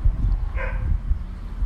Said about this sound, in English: That loud ass dog, man.